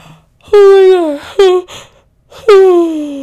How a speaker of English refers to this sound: Can I yawn real quickly? Will you guys hate me if I yawn right now?